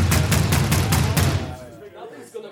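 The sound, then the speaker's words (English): Heavy pounding on a door by revelers at a convention, about six fast, loud, booming blows in a rapid burst that stops abruptly, leaving only quieter, muffled background noise. “Several times I thought my door was being knocked down when revelers mistakenly pummeled mine in lieu of my neighbors.”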